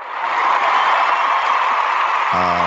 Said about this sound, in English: Hold on. I got to give you some applause.